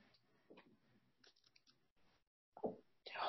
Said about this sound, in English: Bless you.